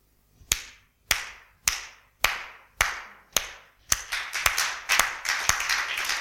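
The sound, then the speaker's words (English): A crowd claps hands in praise of God, in a steady rhythm, starting with sharp, evenly spaced unison claps that swell into a fuller, denser burst of applause-like clapping. No one speaks. “Oh, clap your hands, all you people.”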